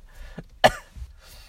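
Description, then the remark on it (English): A single sharp, harsh cough bursts out loudly, preceded by a brief throaty sound and followed by a faint breathy tail, with no talking. “I got tuberculosis.”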